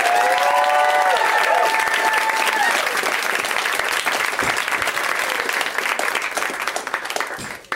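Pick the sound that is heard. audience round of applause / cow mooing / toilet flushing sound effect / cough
audience round of applause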